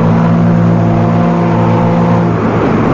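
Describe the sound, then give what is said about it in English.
A riverboat's engine drones steadily as the boat moves out into the stream after loading, a loud, continuous low hum with layered mechanical tones and a rushing wash underneath, no voices present. “The majestic boat moves out into the stream.”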